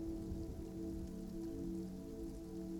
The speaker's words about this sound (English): Keeping your attention there, take in the sound of the rain.